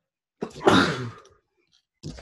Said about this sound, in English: Excuse me. Yeah, what's going on over there? I'm just sneezing. Yeah, stay in your house. No, I think it's allergies. I'm right next to a bunny.